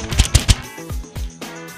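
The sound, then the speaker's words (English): A piece of paper holding the betting picks on the Best Bets radio segment is ruffled for effect right up against a microphone. A few quick, crisp crackling bursts are followed by louder, broader crinkles and rustles, loud with no voices. “Yes, I just ruffled the piece of paper for effect into the microphone.”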